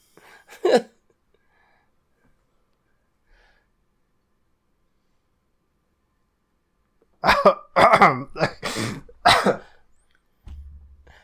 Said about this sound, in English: I burped through my brain.